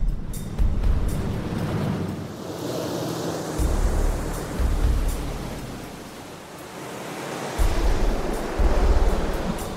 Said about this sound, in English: We've sealed up the cockpit area. We've taped it up so it's on there good. It's tight. And we've left the plug open. And we're going to have the water come over the kayak and see just how much water goes into the plug.